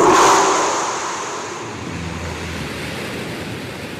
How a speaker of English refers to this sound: Yep, that's the successful launch of the seventh test flight for Blue Origin's new Shepard vehicle. The reusable rocket is designed to take tourists to space and back.